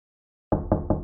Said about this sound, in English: Hey, Gregor, somebody's at the door.